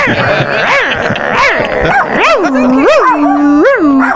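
A dog howls loud in a string of short, wavering yowls that rise and fall in pitch, growing into longer swooping howls toward the end.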